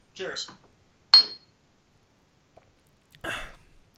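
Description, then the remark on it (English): A single bright clink rings out briefly as beer glasses tap together in a toast, set between short bursts of people speaking. “All right, let's take a sip, shall we? Cheers. Cheers.”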